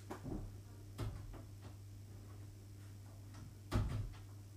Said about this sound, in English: Let me just quickly go shut my door